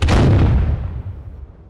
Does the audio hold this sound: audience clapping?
no